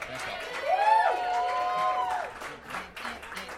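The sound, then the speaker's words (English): A crowd claps steadily for the round two comics, who will write based on the audience's suggestions, while a few loud, high whoops and cheers rise over the applause in the first couple of seconds, then the clapping carries on alone. “please give it up for your round two comics that'll be writing based upon your suggestions.”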